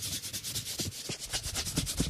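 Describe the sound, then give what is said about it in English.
Paper rustling and being rubbed, a steady run of soft, hissy strokes repeating about every quarter second with a few faint crinkles, no voices. “Oh, that paper sounds good, though.”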